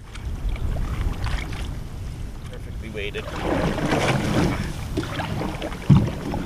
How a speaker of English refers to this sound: I enjoy, instead of a night out on the town, a night out, like a Friday evening, nice relaxing way for me to spend that is to come down the river in the canoe. Like to unwind, just sit here.